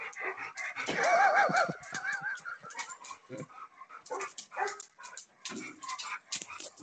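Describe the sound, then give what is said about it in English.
A dog barks and yips excitedly in quick, irregular bursts, with a drawn-out whine early on, fairly loud throughout, with no one talking. “Is your dog running around in circles chasing its tail?”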